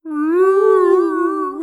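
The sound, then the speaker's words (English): A single long, moaning whale call holds one steady, tonal pitch that wavers slightly before cutting off, loud, with no voices. “Put some whale sounds behind Kate, that beat.”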